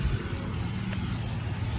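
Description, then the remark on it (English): A car passes on the road while someone walks home from school past construction, a steady low rumble of engine and tire noise that holds fairly even for a couple of seconds, with no one talking. “Oh, there's another car.”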